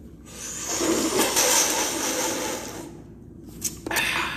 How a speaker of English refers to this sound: But yeah, let's go ahead and crack this caffeine. Yeah, I'm thirsty.